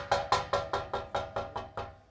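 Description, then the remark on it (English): Eight quick, evenly spaced knocks on a metal door, each striking sharply with a clanging, ringing tone that hangs between hits, fairly loud with no voices. “he came and knocked on the door. It was a metal door.”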